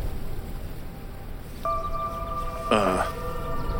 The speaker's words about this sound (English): Did he just honk at us? The clown smiled and honked the horn again. I think he just pulled that out of his bag.